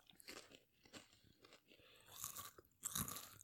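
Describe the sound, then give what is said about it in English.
Crisp crunching of a snack being chewed into the microphone, a series of irregular bites with the loudest bursts near the end, and no talking. “There's a good crunch in the mic for you.”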